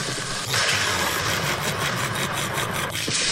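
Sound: lightning thunder sound effect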